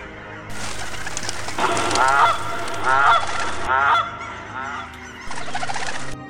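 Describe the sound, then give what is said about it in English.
Several geese honk in a loose series of harsh, nasal calls, about four strong bursts in a row, fairly loud over a steady background hiss. “In the evening, the geese returned home.”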